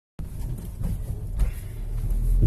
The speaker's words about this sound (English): I have my partner in crime in the car with me today. Driving you in the car today. Driving me in the car today.